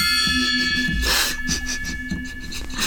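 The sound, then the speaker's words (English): A gong rings out with a shimmering, sustained metallic tone that hangs through the whole moment, its bright overtones lingering over a few softer rhythmic thuds underneath. “I don't really know how to follow that, so here's the gong.”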